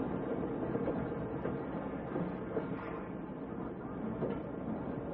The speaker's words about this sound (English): Tonight's file opens outside the small shack that serves as the railroad station in a Midwestern farming town. A lone man stands on the platform watching the noon train from the city arrive.